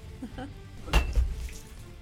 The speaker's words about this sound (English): I'm just going to shut the window one sec.